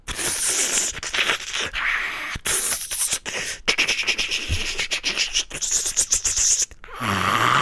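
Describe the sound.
A voice imitates snake jazz with loud, raspy hisses, clicks and sputtering bursts in a loose, uneven rhythm for about seven seconds, ending on a short lower hum.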